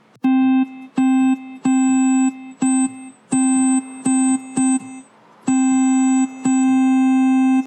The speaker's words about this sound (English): So a waveform is, once again, the basic sine wave plus harmonics. And as we go up, we got higher frequency sounds.